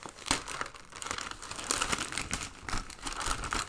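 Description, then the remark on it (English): Crinkling and crackling of bright gift wrapping paper being torn open and crumpled from a box, a steady stream of brisk rustles and small tearing bursts with no voices. “No, just the box with bright covered paper.”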